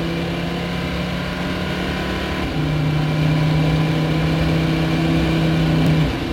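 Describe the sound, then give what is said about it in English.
An Audi prototype race car driven by Timo Bernard runs with a quiet, steady low engine hum down towards the hairpin, stepping briefly to a slightly different pitch partway through, then droning on evenly with no talking. “Let's have a listen to the Audi just to make sure that it's nothing too sinister.”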